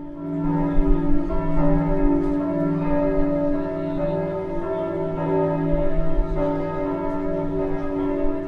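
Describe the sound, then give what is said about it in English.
A peal of church tower bells, from a tower holding ten bells, rings continuously, overlapping strikes forming a dense, resonant wash of tones that rises and sustains throughout, loud with no voices. “We have a tower with 10 bells in it, and they're quite very, very keen enthusiasts.”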